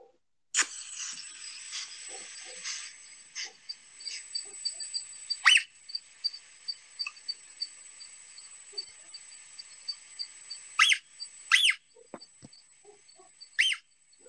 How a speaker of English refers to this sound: And this is a large female cougar calling to her cubs. Get stand back because it's menacing.